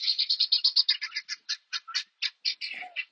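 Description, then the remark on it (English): Agitated guinea fowl, disturbed by a puppy dog that just ran through where they are, give a loud, harsh, rattling string of squawks, rapid at first and then more spaced out, with a shorter, lower cry near the end. No one speaks. “Puppy dog just ran through where the guineas are, and they're not real happy about it.”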